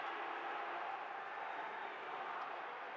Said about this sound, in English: Crowd chanting at the officials. Jazz struggling right now.